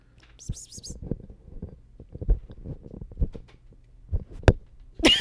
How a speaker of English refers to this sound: Did you hear it? That was her slapping the microphone.